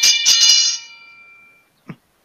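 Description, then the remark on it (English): Bright metallic bells strike several times in quick succession, their shimmering tones ringing out and slowly fading, followed by a brief soft thump near the end. “Oh, and here's some bells.”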